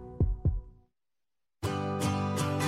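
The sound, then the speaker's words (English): A single deep lub-dub heartbeat, two soft low thumps in quick succession, followed by a second of silence before a bright, busy music track begins. “We work in sync to make sure your heart beats in regular rhythm.”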